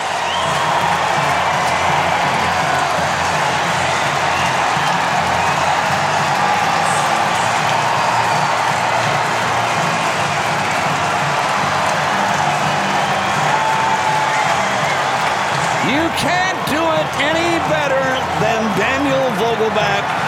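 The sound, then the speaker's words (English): A baseball stadium crowd roars in a loud, steady wall of cheering for about twenty seconds after Vogelbach hits a bases-loaded home run into the right-center bullpen to win the game, with rising whoops and shouts breaking out over the din toward the end. “Listen to this crowd.”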